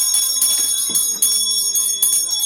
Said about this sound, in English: That bell's loud.